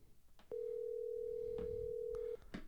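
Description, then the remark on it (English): A steady, loud electronic tone holds at one pitch for nearly two seconds, a phone line's dial tone after the call hung up when a headset was touched, with faint clicks and low rumbling around it. “I touched my headset and it just like hung up.”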